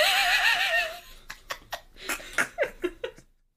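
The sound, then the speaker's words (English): A voice imitates a creature: a high, wavering whinny-like cry, then a rapid string of short, throaty, phlegmy bursts, with no other sound. “I'd say put that on the merch, but I don't know how we would articulate that sound, so. It's a boy! Parentheses, phlegm.”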